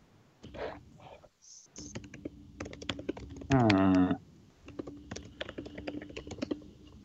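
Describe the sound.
Close, steady typing on a computer keyboard, with quick irregular key clicks running throughout. A short, louder tonal voice-like sound briefly rises over the clatter midway.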